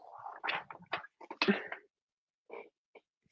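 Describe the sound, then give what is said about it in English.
A dog that wants to be let out grunts and snorts in a rapid flurry mixed with brief whiny whimpers, then falls quiet before a couple of softer, shorter whines. “I'm stuck in here, and you're not letting me out, and I clearly want out.”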